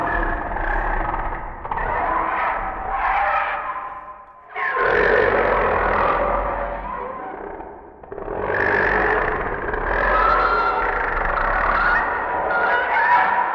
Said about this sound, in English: he painted the following picture. Of me having like a greasy hand and scraping it across some industrial cling film, and like having a fairy liquid kind of fingertips and scraping it across. It kind of sounds like all of the dinosaurs dying at once.